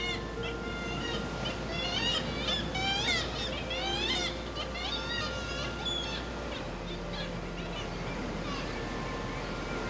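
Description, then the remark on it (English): A busy chorus of kittiwakes calling on Skellig, their sound reflecting off vertical black rocks, many overlapping nasal, wailing cries rising and falling, over a steady low rumble of wind or sea. “Kittiwakes, onomatopoeic, because they say kittiwake, kittiwake.”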